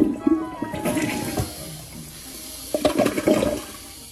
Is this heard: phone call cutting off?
no